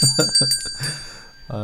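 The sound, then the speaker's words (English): A bell rings with a bright, sustained metallic tone that lingers throughout, while a voice talks in short bursts underneath. “See, I'm gonna ring the bell. Let's get this bell ringing, right?”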